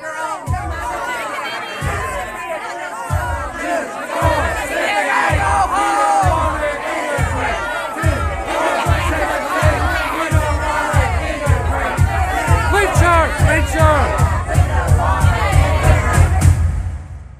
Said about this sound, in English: In the meantime, people were screaming behind me what I would have described as a crowd before. To my ear, sounded like a mob.